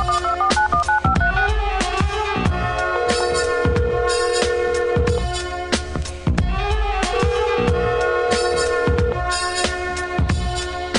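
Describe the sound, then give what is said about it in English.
A run of telephone keypad dialing tones, quick stepped beeps followed by longer held tones, sounding loud over a steady, thumping rhythmic beat with no one talking. “So all you little suckers out there, go get your little cell phones, you know what I'm saying? Call your optometrist.”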